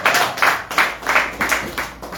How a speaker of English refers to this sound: Let's appreciate the trustee. Thank you so much for the powerful prayers and worship. Let's clap for the trustee one more time. I said let's clap for the trustee.